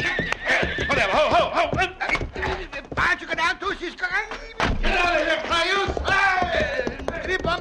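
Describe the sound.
Several horses neigh and whinny loudly during an ambush as riders are yanked off them, their shrill calls overlapping almost continuously, with shouting voices and occasional heavy thumps mixed into the commotion.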